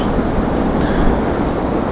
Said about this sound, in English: Wow, you can't hear the trees creaking and cracking and smacking into each other. The wind's really wild today.